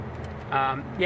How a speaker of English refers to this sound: Sorry, traffic. And you're even the one driving, and I'm distracted by the traffic.